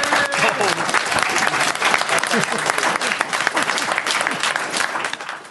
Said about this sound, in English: Let's give a round of applause for Lee and for Rob.